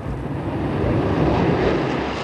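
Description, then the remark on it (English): A loud, steady roar of Concorde supersonic jet engines as BA flight 002 takes off from New York at sunrise, the last supersonic passenger flight to cross the Atlantic; a dense rumbling wash with no pauses and no voices. “Taking off into a New York sunrise, BA-002, the last supersonic passenger flight to cross the Atlantic.”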